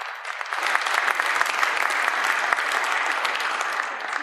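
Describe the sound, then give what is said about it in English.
A crowd applauds steadily, a dense wash of many hands clapping at an even loudness for about four seconds with no voices breaking through. “Give those people a round of applause, folks.”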